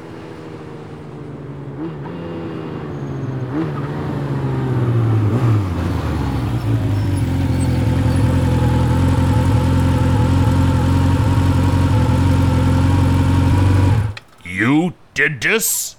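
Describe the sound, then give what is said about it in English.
A candy apple Harley motorcycle engine rumbles steadily, its pitch rising and falling as it is revved several times before settling into a loud, sustained drone; a voice briefly speaks as it cuts off. “This bike never runs so good.”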